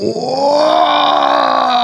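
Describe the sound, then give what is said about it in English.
A voice imitates a huge, drawn-out gasp for air, like a deep breath taken after ripping off a CPAP mask that had no air: a loud, strained and groaning intake lasting about two seconds, with no other sounds. “I mean, the drapes were fluttering with this gasp of air.”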